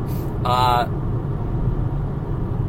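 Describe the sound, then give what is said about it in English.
Steady low road rumble fills a car cabin while driving, constant and fairly loud, with a brief tonal burst near the start before the drone continues on its own. “And again, I'm in my car.”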